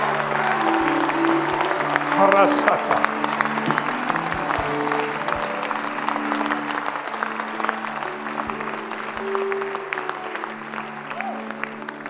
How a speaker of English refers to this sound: Come on. Come on, give the Lord a better hand clap than that.